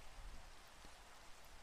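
Steady rain falling, a soft, even hiss across the whole clip with faint low rumble underneath and no voices.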